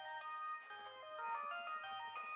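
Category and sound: signal or alarm, cell phone ringtone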